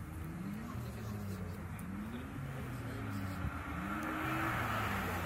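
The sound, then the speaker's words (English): A Lamborghini sports car engine accelerates hard, its pitch climbing in repeated rising sweeps as it shifts through gears, loud and steady over constant road and background noise. “Yeah, all the Lamborghinis I've seen didn't look like he was flooring it.”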